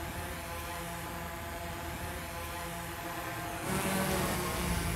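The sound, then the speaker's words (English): Steady whirring of drone propellers as a black-bodied drone hovers out in the heat of the sun before being brought back down to its pad, a continuous buzzing hum with tonal whine that swells slightly louder near the end, with no voices. “So what we're gonna do right now is turn the drone off.”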